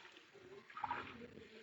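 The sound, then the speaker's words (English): Water runs from a faucet into a cup held under it until it runs over, one of five cups of water measured out for a pitcher with lemon juice; a soft steady rushing and trickling that swells briefly as the cup fills, with no voices. “Now this I do hold under the faucet Just let it fill up until I hear it running over.”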